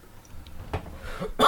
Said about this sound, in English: Now I'm coughing every 5 seconds because we're doing a podcast.